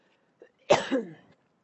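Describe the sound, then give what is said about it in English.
A single sharp cough bursts out and trails off into a rough, throaty tail, with only silence around it and no talking. “Sorry, when I cough, I should probably cover this, huh?”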